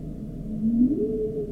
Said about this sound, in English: Those are the humpbacks.